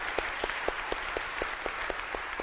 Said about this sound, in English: could we have an extra round of applause for Al and Hannah and everything that they do in this work?